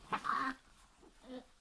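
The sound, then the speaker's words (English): A dog gives a short, high whimpering whine, followed about a second later by a softer, fainter whimper. No one speaks. “There were strange dogs all around her.”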